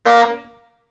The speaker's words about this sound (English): And Splat went honk.